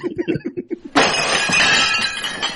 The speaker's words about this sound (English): Yes, there's now broken glass and plates somewhere on the floor right now. I think it's the same sound effect from Groundhog Day when the waiter drops an entire tray of plates.